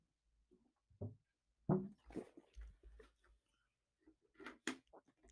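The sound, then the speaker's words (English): Quiet mouth sounds of someone sipping alkaline water: a few brief wet slurps and gulps spaced irregularly, with short pauses between them and no talking. “But as I take another sip of alkaline water,”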